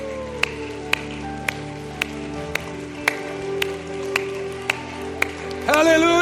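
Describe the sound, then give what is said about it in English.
A church audience claps in a steady, even beat for people coming up front for prayer, sharp claps about twice a second over sustained organ-like chords, with the sound swelling louder right at the end. “Let's give these an applause that are coming.”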